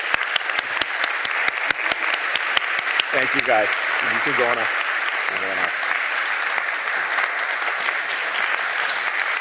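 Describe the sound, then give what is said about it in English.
Sustained, dense applause and a standing ovation from a large church audience at the close of a service fills the whole stretch, steady and loud, with a man speaking briefly over the clapping midway through. “So I'm going to ask these folks to stand up, and I'm going to ask you to give them one more round of applause, and then we'll close the service.”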